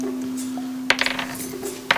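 Dice rolled for the other players clatter onto a hard table: a sharp first hit, a quick burst of tumbling rattles, then one more crisp click, over a low steady hum, with no talking.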